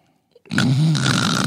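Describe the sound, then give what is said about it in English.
A person imitates a man's snoring with one loud, rough, rattling inhale lasting about a second, after a brief quiet moment. “I can't sleep next to him because he snores through it, and yes, I wear earplugs.”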